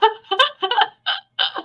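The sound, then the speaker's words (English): A quick run of about five short, voiced burps, fairly loud, the first three tumbling together before two separate belches after brief pauses, as a person releases gas from their stomach. No talking. “As usual, I purged out the gas in my stomach. Exactly. Burps.”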